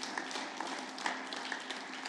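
A crowd claps together as a hand clap of praise to God, a steady, dense wash of applause, many hands overlapping into a continuous crackle at moderate volume with no talking.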